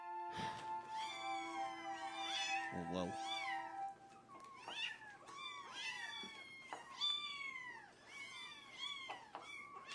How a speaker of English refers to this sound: So our next one is, how many kittens can you hear now?